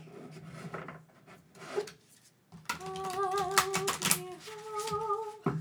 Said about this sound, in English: So let me shuffle these up a little bit. I shuffled them some, but I need to shuffle them more.